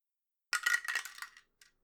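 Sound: dice being rolled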